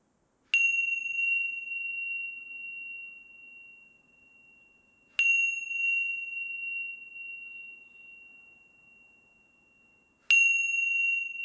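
signal or alarm, meditation bell ringing

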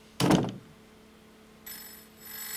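household object, telephone bell ringing

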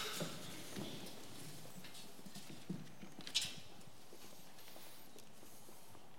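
nature, rain falling outside

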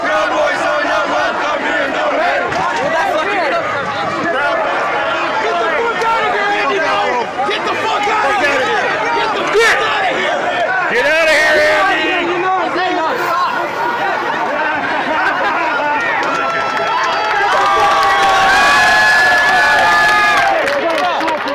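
crowd, crowd of protesters shouting

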